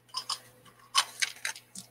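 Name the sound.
dice being rolled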